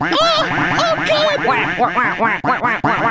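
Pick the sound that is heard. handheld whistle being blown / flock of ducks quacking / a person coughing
flock of ducks quacking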